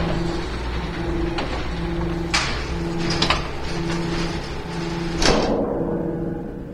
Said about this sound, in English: Environmental protection doors now closed.